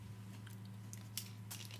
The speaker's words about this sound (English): Oh man! You need to work on your water drinking.